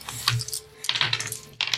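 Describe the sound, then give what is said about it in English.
Three dice clatter and rattle across a hard table in three quick bursts of sharp clicks, fairly loud, with no talking over them. “So now we all roll 3 dice.”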